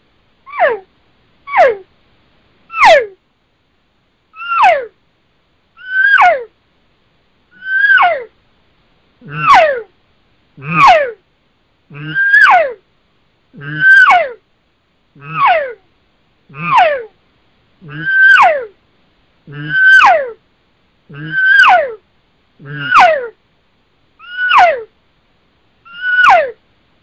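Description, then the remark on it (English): A person imitates cow elk calls with a series of about eighteen high, descending squealing calls, evenly spaced and loud, building from normal cow calls into higher-pitched, excited estrus screams that grow raspy toward the end. “I'll turn it up a little bit and get into more of that high-pitched, excited stuff and, you know, that kind of estrus scream that I do so the listeners can hear the difference.”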